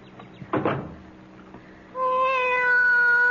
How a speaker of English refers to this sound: Be quiet, cat. I want to think.